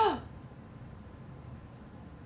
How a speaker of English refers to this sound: Why did you gasp?